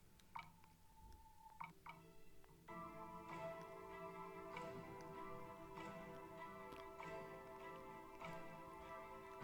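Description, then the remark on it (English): A song from a movie soundtrack with a steady, continuous clock-like ticking running through it, sustained tonal notes building after a sparse opening and the regular ticks staying clear and prominent throughout, with no voices. “There's a song where it just continuously ticks.”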